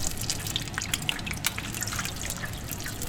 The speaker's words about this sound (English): And that's how he carefully cooks each and every piece individually. Only when the bubbles sound just right does he whisk the freshly cooked tempura out of the oil, swiftly dabs away any excess oil, and voila!